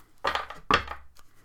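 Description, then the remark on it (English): A deck of cards being shuffled poker-style: two quick, crisp riffling bursts of fluttering card snaps, each lasting about a third of a second, followed by a faint tap. No one speaks. “And yes, I shuffle mine like I'm playing poker.”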